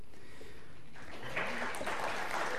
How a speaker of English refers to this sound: All right, this is the first service that clapped. I will take that clap as encouragement to keep going.